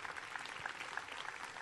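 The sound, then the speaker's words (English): A church audience claps during a sermon for a couple of seconds, a dense, even patter of many hands with no voices over it, moderately loud throughout. “And that's good news, church. You can clap about that.”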